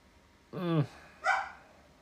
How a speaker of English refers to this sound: Dogs.